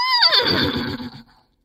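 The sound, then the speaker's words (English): A person vocally imitates a horse whinny for a fake radio ad for a cowboy-themed buffet: one loud neigh that starts high, slides downward into a shaky, rapidly fluttering whinny, then trails off after about a second. “I do a goofy country accent and a horse whinny in it.”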